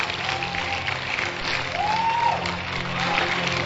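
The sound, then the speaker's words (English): A church audience claps its hands to celebrate the Lord after a prayer, a steady, dense wash of applause that lasts throughout, with murmuring crowd noise underneath and a brief rising whistle-like whoop partway through. “Clap your hands. Celebrate the Lord.”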